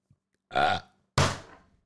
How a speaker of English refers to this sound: Okay with the burping,